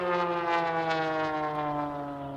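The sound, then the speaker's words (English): A plane passing, a steady droning hum with strong harmonic overtones, holding a constant level and sinking slightly in pitch. No talking is heard. “Really cool plane in the background.”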